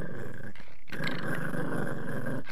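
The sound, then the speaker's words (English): A dog named Lulu growls low and steady, a rumbling snarl that pauses briefly before resuming and rolling on continuously, with no one talking over it. “I heard you growling in the background.”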